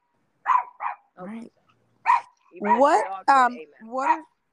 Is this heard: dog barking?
yes